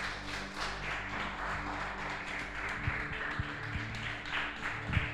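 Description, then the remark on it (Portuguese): An audience applauds the Lord Jesus, a dense, steady wash of many hands clapping with scattered sharper claps and taps standing out over a low continuous hum. “Aplauda o Senhor Jesus.”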